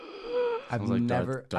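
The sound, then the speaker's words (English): A person imitates a heavy, raspy inhale, a TikTok sound likened to Darth Vader: a drawn-out wheezing breath lasting under a second, followed immediately by a voice. “He's like breathing in.”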